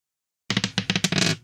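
Dice rolled for a check clatter across a hard tabletop in a quick series of sharp, bouncing clicks that run together into a brief rattle, fairly loud, with no voices.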